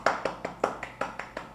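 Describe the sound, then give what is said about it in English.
A steady run of about nine sharp hand claps, evenly spaced at a brisk rhythm, each a crisp smack with a short decay, with no voices. “So yeah, I would give you guys a clap right here for being a K-pop stan.”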